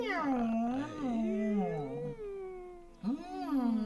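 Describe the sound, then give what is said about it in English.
Squeegee-like vocal sounds in a choral warm-up: a voice slides up and down in long, squeaky, whining pitch glides, almost like a cat's meow, with one sustained swoop, a short pause, then another rising slide. “And making some squeegee sounds.”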